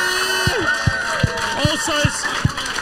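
An audience cheers and whoops while steady rhythmic thumps, like unison clapping or stomping, land about twice a second over a few seconds.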